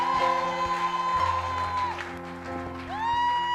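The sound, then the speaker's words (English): A church audience claps for the Lord at a morning service, a dense, continuous patter blended beneath sustained keyboard chords whose pitch bends and swoops a couple of times. “I'm not enjoying your clapping.”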